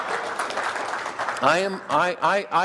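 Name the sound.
audience clapping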